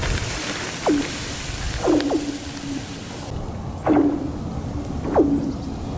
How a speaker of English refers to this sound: I don't know if you're aware of this, but the ice makes sound. Lots of different sounds. Some creaking, some expansion sounds, some freezing ice, making ice sounds, if you will. And some of that is very unique. Listen to this.